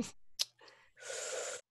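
Heavy, ragged breathing up close: a few quick sharp inhales followed by a long, loud, breathy exhale, with no talking.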